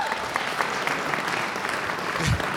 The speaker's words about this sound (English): Give them another even warmer round of applause, please.